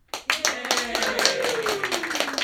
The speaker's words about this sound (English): So, a round of applause for Tom Knudsen. Good work. Yay.